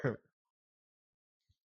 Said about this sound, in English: Podcasting, you cough a lot.